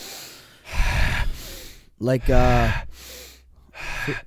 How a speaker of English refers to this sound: Listen, I'm explaining it real quick and very simple. It's just deep breathing for 30 to 45 inhalations through your abdomen, though.